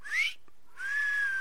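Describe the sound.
A wolf whistle, a short rising note followed by a pause and a longer, gently falling note, whistled clearly with nothing else around it, as if at a woman walking by.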